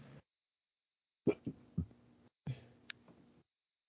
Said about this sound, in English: I know, we're one of those stupid shows that people burp on the air. Better out than in, as Shrek would say.